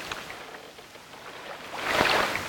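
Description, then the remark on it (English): A single dull knock as a small dinghy, drifted back on the tide, bumps a boat's hull, rising out of a steady wash of water and wind. The thud lands with a brief surge of splashing. No one speaks. “It's just the dinghy. You don't have to look. Yeah, it was the dinghy. It was bumping the hull.”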